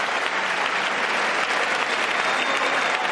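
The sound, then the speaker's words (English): Sustained, dense applause from a large crowd in the House chamber after President Joe Biden's first State of the Union speech, loud and steady throughout without any pauses or speech. “Live coverage from CBS News, President Joe Biden in the House chamber getting the applause after his first State of the Union speech.”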